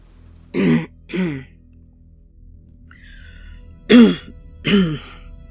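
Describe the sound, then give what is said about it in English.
A man clears his throat and swallows: two pairs of short, rough, raspy bursts, fairly loud, separated by a quiet pause with no speech. “He had to clear his throat and swallow to be understood.”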